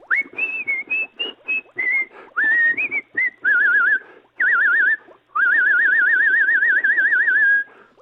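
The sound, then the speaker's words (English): Someone whistles a bouncy tune of short phrases with trills, ending on a long, wavering sustained note. The whistling is fairly loud, with no talking. “Stop whistling, sir.”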